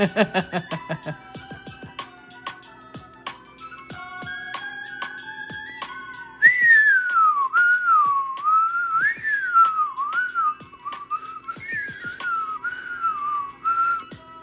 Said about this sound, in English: I bet you didn't know I could whistle.